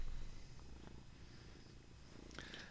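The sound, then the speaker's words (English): A cat purrs steadily, a soft continuous low rumble with gentle rhythmic pulsing, fairly quiet, with a brief faint rustle near the end and no talking. “Oh, kitty cat.”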